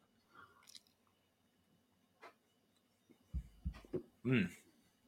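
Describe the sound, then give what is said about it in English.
Someone takes a first sip of stout: a few soft wet mouth clicks, then several gulping swallows, ending with a short satisfied voiced exhale. “I'm gonna take my first sip here.”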